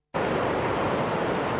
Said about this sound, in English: The sound of the River Boyne, a special area of conservation, as it flows past the old cotton mill at Dollarstown between Navan and Slane.